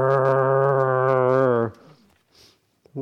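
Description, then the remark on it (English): A person imitates a tiger's growl with one loud, sustained, low-pitched vocal rumble lasting about a second and a half, followed by near silence and a soft breath. “I know when I was doing training in samadhi practice, one of the things I did was I would sometimes, when there were certain repetitive thoughts coming, I would summon tiger energy and actually go.”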